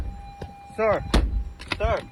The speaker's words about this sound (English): In the video, you hear the passenger hit the car.